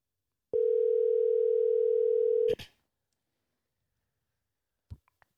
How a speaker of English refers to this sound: With that being said, stand by for a phone call with the producer.